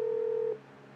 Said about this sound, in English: This is like the beginning of a … skit. You hear the phone ringing? You know they're about to fuck with somebody?